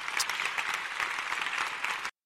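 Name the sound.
audience applauding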